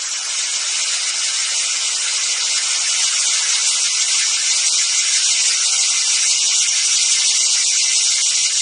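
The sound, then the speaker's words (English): A dense, steady chorus of cicadas buzzing loudly and continuously, a shimmering high-pitched drone with no pauses, enveloping, with no voices or other sounds. “let's hear a quick clip from it, from the Song of the Cicada”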